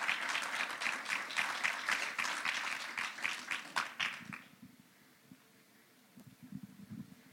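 An audience breaks into applause, a dense patter of many hands clapping steadily for about four seconds before it cuts off, leaving faint low rumbling and a few soft shuffles.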